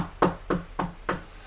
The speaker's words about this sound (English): I'm going to knock on the neighbor's door and see if I can get their TV. Hang on.